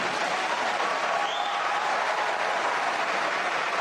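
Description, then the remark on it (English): A large crowd of Republican lobbyists at a debate applauds and cheers steadily throughout, a dense wash of clapping with scattered shouts and screams, loud and sustained without letting up. “there are all the Republican lobbyists filled in the debate stage, cheering and screaming for Giuliani”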